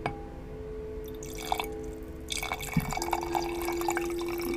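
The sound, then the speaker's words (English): Wine pours from a small bottle into a glass, fairly quiet: a few early drips and trickles, then a steadier gurgling stream filling the glass over a faint hum, with no talking. “get your wine with me so we can cheers, toast up”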